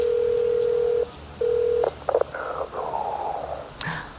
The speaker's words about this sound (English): I'm going to give him a little call on this cell phone here.